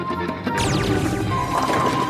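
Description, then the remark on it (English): Bowling pins at the Apex City bowling zone, knocked over in a strike by Captain Laserbeam's laser, crash down with a loud, sudden clatter, then keep rattling and knocking together in a busy, ringing jumble for over a second. No one speaks. “Excuse me, it's against the rules to use your laser to knock over the pins.”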